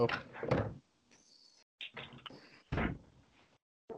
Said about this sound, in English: In any case, I'm pretty sure no one's wondering, but yes, I got a mini fridge. That is pretty badass. He just opened a mini fridge door at the edge of the video.